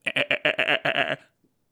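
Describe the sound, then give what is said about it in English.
A small goat carried in a tote bag lets out a single quavering bleat, about a second long, with a rapid wobbling tremor. It is fairly loud, with no talking over it. “He's carrying a tote bag with a small goat in it.”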